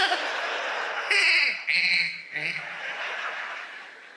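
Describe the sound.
A human voice mimics a goat's bleat: a few quavering, nasal cries in quick succession, fairly loud, with no words spoken.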